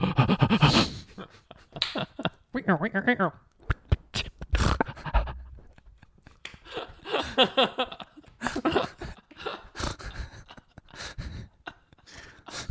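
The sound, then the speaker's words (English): A person doing a 'breathe boxing' breathing exercise breathes hard and rhythmically, with forceful, panting bursts of huffing and puffing, broken by short pauses and a few vocal gasps. “I just been doing breathe boxing where I go.”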